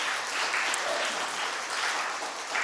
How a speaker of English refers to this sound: Can we just give her one more round of applause? Yeah.